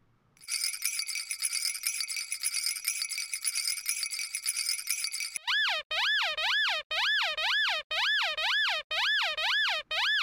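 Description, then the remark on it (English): A steady, bright rattling shake runs for about five seconds, then gives way to a loud series of about six rhythmic horn honks with a rising-and-falling, wavering pitch. No one speaks. “In other words, the horns didn't align with the image in your head associated with shaking.”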